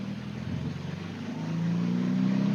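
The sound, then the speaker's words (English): A small car's engine hums steadily, then rises in pitch as it accelerates around sweeping bends on a winding road, heard from inside the cabin with a constant low road rumble and no voices. “So it's been a great little car to drive, this one. Very satisfying. Look, going around the sweepers in these very unsupportive but incredibly comfortable seats.”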